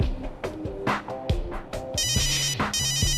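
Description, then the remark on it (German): A mobile phone rings with an incoming call, a bright electronic ringtone of repeating melodic notes over a rhythmic pulsing pattern, fairly loud, with no one speaking. “Wow, der ist schnell. Na los, geh ran.”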